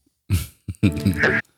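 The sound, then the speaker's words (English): A person imitates a dog with their voice, the kind of voice used to act out a dog's inner monologue: a rough, throaty bark, a short yip, then a longer growling whine that rises in pitch before cutting off. No words are spoken. “Sadly, I got lost by the guy doing your dog voice.”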